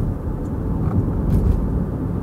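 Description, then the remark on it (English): Steady low rumble of a car driving along the Taconic State Parkway, slowing behind a bus as the speed limit drops, with continuous engine and tire noise filling the space and a faint hiss of passing air, no voices. “And now we're in a bit of a slowdown. We're behind a bus.”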